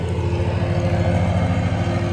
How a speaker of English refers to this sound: They're currently mowing the lawn.